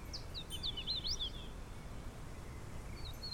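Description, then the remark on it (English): A hooded warbler sings a quick run of bright, slurred whistled notes lasting about a second, followed by a faint brief phrase, over a low steady background rumble. “No, that's a hooded warbler.”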